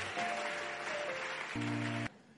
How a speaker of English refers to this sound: Come on, clap your hands and give God praise.